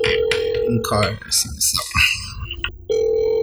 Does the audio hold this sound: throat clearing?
no